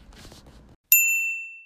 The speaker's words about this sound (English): You have reached the cellular device of Gideon Jura. Please leave a message after the bell.